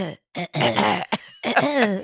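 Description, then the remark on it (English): A person lying in bed repeatedly clears their throat in several short, rough bursts with brief pauses between them, fairly loud, with no other sounds around. “my throat still has a tickle pickle. I guess it must be post-nasal drip, but I'm lying in bed and I go like this 50,000 times.”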